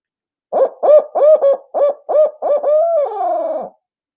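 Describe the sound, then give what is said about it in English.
A rhythmic series of loud owl hoots blown on a Woodhaven Ninja owl call, an 8-note hoot of quick paired notes ending in a drawn-out, wavering final hoot, with no talking underneath. “But I'll give the 8-note hoot, and I'll give it to you real quick with a Woodhaven Ninja owl.”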